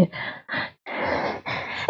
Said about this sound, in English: Sorry, I sneezed. That's all right. Gesundheit.